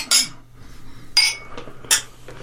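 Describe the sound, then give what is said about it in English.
Beer glasses clink together three times in a toast, each strike bright and briefly ringing, spaced roughly a second apart with no voices. “Thanks for bringing beer and sharing that. Cheers. Cheers. Cheers.”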